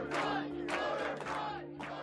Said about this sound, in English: Clearly, this is a raucous crowd. It was a raucous and confined crowd on the 19th floor with people trying to get into the room where the canvassing board was going to commence operations.